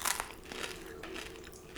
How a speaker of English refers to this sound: Ooh, hear that crunch. That's nice.